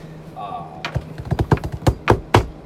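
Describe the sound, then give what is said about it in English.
Someone bangs on a table with a rapid, uneven run of about ten sharp thumps, after a brief murmured voice at the start. “Stop banging on the fucking table. It's loud.”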